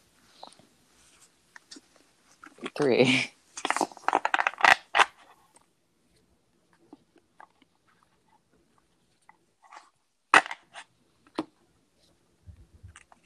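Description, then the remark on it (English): An oracle card deck, the Spirit Animal Oracle by Colette Baron Reed, is shuffled three times for a reading: a dense riffling burst and a quick run of papery flicks, then scattered soft taps and one sharp snap, with no talking. “Okay, so I'm going to shuffle 3 times. The deck I'm reading from is the Spirit Animal Oracle, Colette Baron Reed.”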